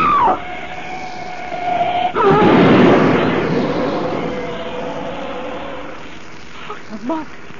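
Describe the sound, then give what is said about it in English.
A sustained high screech gives way to a loud, violent crash of smashing metal as a black shape speeding down the road smashes Frederick Butler's car to bits; the crash roars for a couple of seconds before slowly dying down into a low rumble. “That ugly black shape, it smashed Butler's car to bits as though it were an eggshell.”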